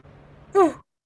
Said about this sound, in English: I'm still yawning a lot.